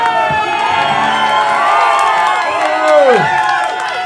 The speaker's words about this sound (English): The crowd are laughing and chanting his nickname.